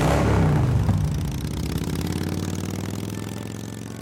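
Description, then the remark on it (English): A motorcycle engine revs loudly, then eases back into a steady, throbbing idle rumble that carries on for a few seconds with no voices, as someone sets off on a motorcycle ride. “I said, "I'm going to go for a motorcycle ride."”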